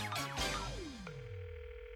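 A couple of quick descending electronic swoops give way to a steady, unbroken telephone dialing tone that holds at moderate volume to the end, with no voices.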